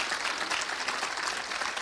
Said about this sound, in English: Please, somebody clap your hands.